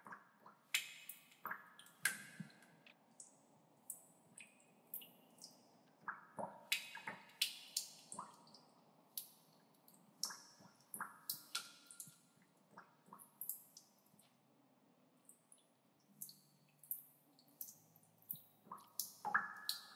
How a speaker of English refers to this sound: Fourth drop of water.